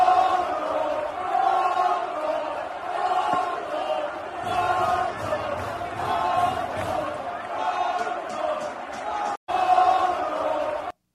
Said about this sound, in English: Now, the ref and players came over to see what was going on and caught the fans chanting racial slurs, calling him a monkey and telling him that he should die. Now, here's a video of them yelling mono, which is monkey in Spanish. Take a look.